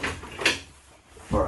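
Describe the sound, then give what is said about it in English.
A door is opened to let in Ramona, who has been barking outside it: a sharp click of the latch, then a brief rustling scrape as it swings, with a low voice murmuring at the start and end. “Okay, maybe I'll open the door and she'll stop barking.”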